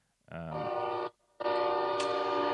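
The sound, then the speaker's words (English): A train horn sounds two loud, sustained blasts, the first about three-quarters of a second and the second longer, with a short gap between them and no one talking. “Train says no.”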